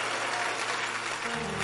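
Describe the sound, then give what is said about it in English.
An audience claps hands together in a dense, continuous wash of applause that stays steady and fairly loud throughout, with low sustained tones entering near the end. “You better clap your hands and mention your name properly.”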